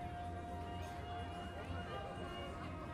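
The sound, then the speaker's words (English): A dense crowd of people, neighbors and relatives, chatting and laughing on a road clogged with cars and bikes, many voices overlapping into a steady hubbub with shouts of recognition and no single speaker standing out. “People laughing, neighbors chatting, shouts of recognition from long-lost friends.”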